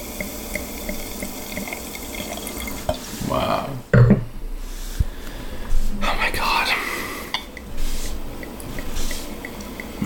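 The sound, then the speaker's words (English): Champagne pours into a glass in two short bursts with a fizzy, bubbling hiss. People exclaim briefly between pours. “Beautiful fizzing.”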